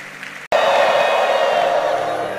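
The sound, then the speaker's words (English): A crowd breaks into loud, sustained clapping and cheering after a brief pause, a dense wash of many hands with scattered whoops continuing steadily without speech. “Are you clapping?”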